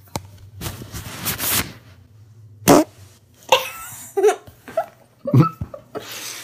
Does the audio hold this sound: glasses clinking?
no